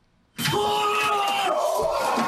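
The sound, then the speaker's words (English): A large rioting crowd at the U.S. Capitol yells and roars together in a loud, sustained wall of overlapping shouting voices, erupting suddenly after a brief quiet moment and holding at full intensity. “Those on the podcast, all of that yelling. That's clip.”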